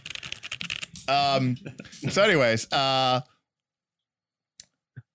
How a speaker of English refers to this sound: I think I have the loudest keyboard in the world. Right. It's so loud.